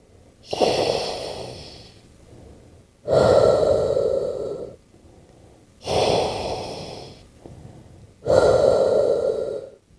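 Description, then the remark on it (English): Slow, steady mechanical breathing from a hospital respirator for a man in a coma cycles through four loud inhale-exhale pushes with brief pauses between, a hissing, rasping airflow alone, no voices present. “It's a respirator.”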